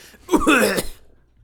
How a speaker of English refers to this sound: I audibly cough.